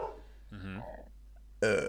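A man lets out a low, croaky burp, followed after a short pause by a second, louder and longer belch.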